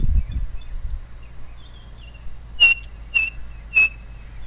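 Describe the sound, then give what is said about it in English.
A small bird, not much bigger than a thumb, with a chestnut band across its white breast, whistles three clear, evenly spaced notes in slow succession, standing out against a low outdoor rumble with a brief muffled thump at the start. “It makes a call, three blind mice.”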